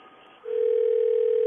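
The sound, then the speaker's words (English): After a brief quiet moment, a steady, single-pitched telephone tone starts and holds unbroken to the end, clear and fairly loud, like a ringback heard on the line while a call waits to connect. “Don't answer the phone just yet. Just let her phone go.”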